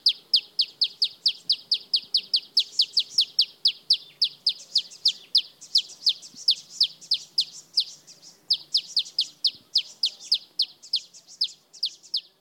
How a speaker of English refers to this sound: Here's a male malachite sunbird in South Africa. He's singing while perched on an aloe plant. If you listen carefully, you can hear a bonus bird. In the background is a male southern double-collared sunbird.